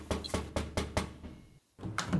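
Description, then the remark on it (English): Five loud, rapid knocks bang on the door of a restaurant with a bar in a steady rhythm, then fade into a brief hush before another dull thump follows. “Jake is in the kitchen behind the bar setting up for opening until a loud knock at the door is heard.”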